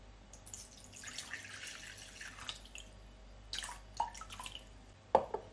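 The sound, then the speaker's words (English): Brandy being poured into a bowl that already holds lemon juice: a splashy trickle runs for a couple of seconds, then a shorter second pour, ending with a sharp drip or clink. “So first I'll add the brandy.”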